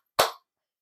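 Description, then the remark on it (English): A single sharp hand clap rings out once, a bright, crisp smack with a quick decay, followed by silence. “1 point for the clap.”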